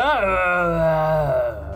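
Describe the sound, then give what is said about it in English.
A person voices a loud, drawn-out zombie battle roar for a character who grasps an ancient blade and rushes towards Prancer, a single groaning yell that rises sharply, holds steady for over a second, then sags lower and trails off. “He grasps his ancient blade and rushes towards Prancer, yelling out a zombie battle roar.”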